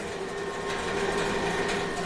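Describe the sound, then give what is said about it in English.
A conveyor belt running up to speed: a steady mechanical whirr with a droning motor tone and a light rattling hiss, holding at an even, moderate loudness with no voices. “just to fire up the conveyor belt.”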